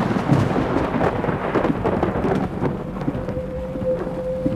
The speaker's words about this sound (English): Rain dumped down, and lightning flashed. And it revealed the thing.